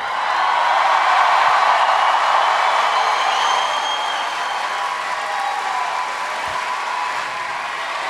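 A large crowd claps and cheers in a steady, dense roar that stays loud throughout, easing off only slightly toward the end.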